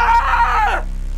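A man lets out a loud scream of horror on seeing a bloody severed head land at his feet. The scream holds strained for under a second, then drops in pitch and breaks off into quiet.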